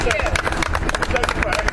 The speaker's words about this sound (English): Several of the jurors returned today to watch the sentencing, and as they left, they were applauded by bystanders.